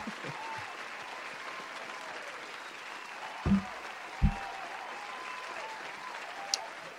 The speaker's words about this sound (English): I'm so exhausted from campaigning at this point, I'm just going to let the applause go all the way out.